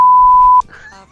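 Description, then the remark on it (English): A loud, steady single-pitch censor bleep runs for about half a second, masking a word, then cuts off abruptly as a man's voice continues talking. “You want to ask me that again so you don't have to beep that out?”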